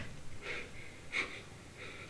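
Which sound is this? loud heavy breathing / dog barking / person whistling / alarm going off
loud heavy breathing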